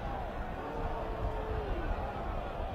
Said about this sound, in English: Fans again booing, not liking the play selection.